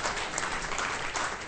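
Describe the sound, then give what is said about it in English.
An audience at the Tacoma Comedy Club claps steadily after a movie roundup segment. It is a dense, even wash of many hands applauding with no voices over it, holding at a constant moderate level throughout. “Probably the first time that's gotten applause at the end of it.”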